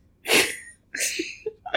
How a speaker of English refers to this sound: Bless you. What's in a sneeze? I know. In my family, we say bless you for everything. Well, excuse me. I apologize. That came out of nowhere.